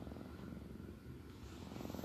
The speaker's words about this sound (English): He's sleeping over here. You guys want to hear him purr? Can you hear it?